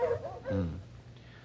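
Two bloodhounds, Maud and Sneaker, cold-trailing dogs, whimper in short, whining bursts, a few mournful cries rising and falling over a second or so, with a fainter whine trailing off at the end.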